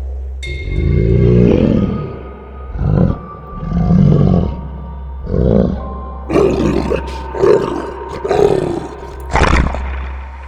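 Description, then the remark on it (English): A wolf growls and snarls in a series of deep, rough bursts, loud, rising and falling about every second with a low rumble underneath and no voices. “The Wolf.”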